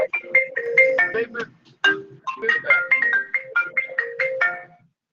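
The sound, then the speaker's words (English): A phone's melodic electronic ringtone plays loud and clear, with bright stepped notes in quick repeating phrases, pausing briefly before the tune starts again. “Well, answer the phone”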